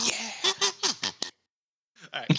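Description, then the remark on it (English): A professional kazoo mimics a duck, blowing a rapid run of about five buzzy, nasal quacks, then a brief silence before a couple more. Fairly loud, and no one speaks. “That was very duck-like, actually. Yeah, I use a kazoo.”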